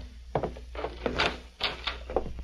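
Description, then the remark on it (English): A door is opened, with a run of clattering clicks and knocks from the latch and handle, followed by a creaking scrape as it swings. No one speaks. “You open the door, Scar.”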